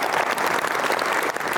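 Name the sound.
audience applause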